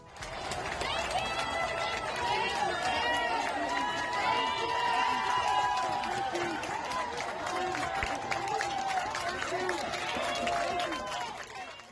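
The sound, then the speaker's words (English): Hospital staff in New York clap and cheer steadily for about twelve seconds as protesters walk by, with shouting and many voices blending into a dense, lively outdoor roar that barely rises or falls. “That was a clip of hospital staff applauding protesters as they walked by in New York earlier this week.”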